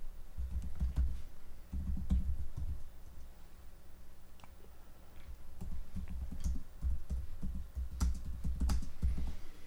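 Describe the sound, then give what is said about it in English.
Rapid typing on a computer keyboard, with irregular bursts of key clicks and short pauses between flurries, heard on its own without any talking. “You get all the typing in there?”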